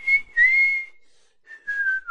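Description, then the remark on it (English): A person whistles a short melodic phrase, clear, with a brief pause in the middle before the tune resumes on a slightly falling note. “Just me whistling for 45 minutes.”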